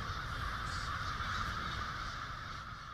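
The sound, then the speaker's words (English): A large flock of crows in woods caws and squawks at once as they fly up in alarm, a dense, continuous chorus of harsh calls holding steady for the whole stretch, loud, with no voices. “A scream echoes into the woods, causing birds to fly up into the air in alarm.”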